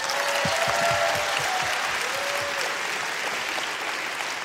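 A crowd breaks into sustained applause, a dense wash of clapping at steady loudness for several seconds, with a few whoops and cheers rising above it.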